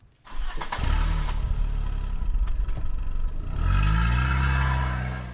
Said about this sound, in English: All right, what was that? Yeah, turn the car on and get going.